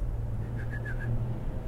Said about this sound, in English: I couldn't whistle too good, but... there we go.